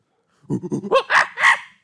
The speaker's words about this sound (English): If they keep barking, then yeah. My dogs do that too, though.